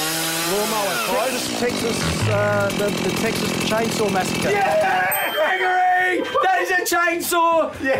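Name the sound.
chainsaw running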